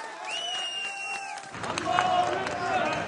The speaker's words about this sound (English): Chants of God is great echo through a crowd as another survivor is loaded into an ambulance.